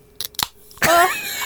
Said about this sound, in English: Oh my god, how do you open a can? Oh, that is so sexual. That is just so satisfying. That sound.